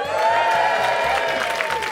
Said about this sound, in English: All the people with hangovers going, oh, is there going to be a lot of cheering in this show? Quite a lot of cheering.